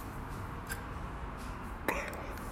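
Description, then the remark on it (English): A single short, sharp cough bursts out near the end, fairly loud, with a fainter catch in the throat a moment earlier against quiet background noise. “And excuse me, I got this little cough I'm trying to get rid of, you guys.”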